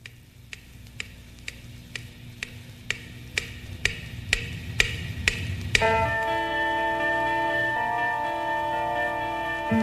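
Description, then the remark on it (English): A clock ticks steadily, about twice a second, then the alarm clock, set for 8 o'clock, bursts into a loud, continuous metallic ringing that carries on to the end. “these two hands come out of the clock and make sure you get up.”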